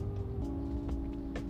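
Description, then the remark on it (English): A loud truck's engine rumbles steadily as it comes by, a deep droning hum with a low tonal whine, loud and constant throughout with no voices. “I got this loud ass truck coming.”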